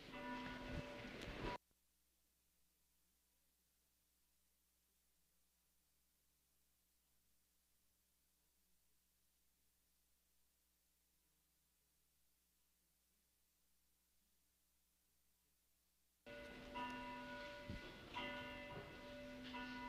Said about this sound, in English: The Communion of Saints Bell calls us to worship.